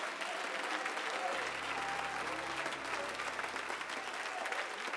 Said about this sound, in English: Oh, why don't you clap your hands to Jesus one more time?